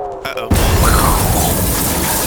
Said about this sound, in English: Explosion.